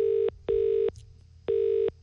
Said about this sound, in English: let's put a call through.